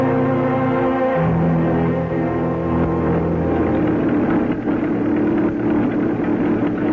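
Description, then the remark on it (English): A car engine hums steadily throughout, a low continuous drone with shifting tones as the vehicle, driven by a woman, drives along, moderately loud, with no talking. “Are you surprised to see a woman driving a car?”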